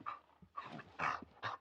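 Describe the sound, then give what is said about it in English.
A cadaver dog pants in short, breathy bursts, about four quick huffs, with faint whimpering mixed in, during a police search of a former home's backyard in Kennesaw. No one speaks. “authorities gained permission from the new owners to search it, and thanks to man's best friend, cadaver dogs, they alerted to the possible scent of human remains.”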